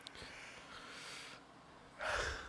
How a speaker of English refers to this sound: Too tired. I've had an emotional turmoil today. I've had enough. I think this is crazy. Oh, I got a yawn.